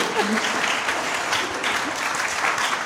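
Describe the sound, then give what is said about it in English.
A crowd breaks into steady applause, dense clapping filling the whole stretch at an even, fairly loud level, with a few faint voices and whoops mixed in. “I do think, you can clap if you like, it's okay.”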